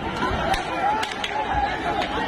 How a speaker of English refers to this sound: Angry crowds clashing with police. What are they upset about? Rising fuel costs and inflation.